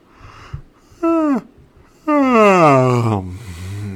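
A faint, dull knock of a drink glass being set down, followed by a long, loud, drawn-out yawn that glides downward in pitch, preceded by a shorter voiced sigh. No one speaks.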